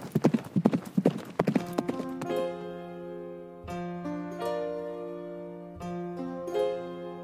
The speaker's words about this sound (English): I threw Benno on his horse, jumped onto mine, and we went as fast as the wind